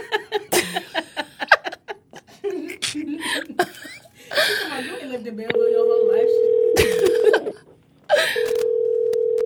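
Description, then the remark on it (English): A phone call placed from another person's phone rings out over a speakerphone, a steady electronic tone held for a couple of seconds, then repeating after a brief gap, with voices and laughter chattering beforehand. “Let me call from your phone.”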